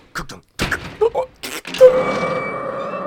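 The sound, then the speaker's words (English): A series of sharp metallic clacks as about five bolts slide back, followed by a heavy door swinging open with a long, drawn-out tonal creak, fairly loud. “And as Mac is reminiscing on this terrible confusion of tax records, the door opens. There's like five bolts.”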